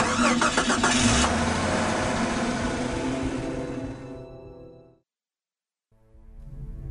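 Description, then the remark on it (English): A truck engine cranks and catches, then runs with a loud, steady rumble before cutting out into a second of silence and rumbling back up again. “Put him in the truck.”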